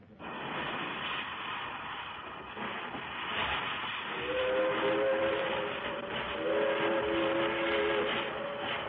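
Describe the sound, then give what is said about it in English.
A train at the Pekin railroad station rumbles steadily and loudly, then a sustained horn or whistle sounds twice in the second half over the continuous clatter. No one speaks. “that day, I met Dick Fawcett again, this time at the Pekin Railroad Station”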